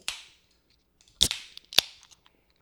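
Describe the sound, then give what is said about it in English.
Cans of 6-Point Bengali beer from 6-Point Brewery of Brooklyn, New York, being cracked open: three sharp snapping pops, each trailed by a short fizzing hiss, spaced about half a second to a second apart, with no talking. “I love the sound of a can opening.”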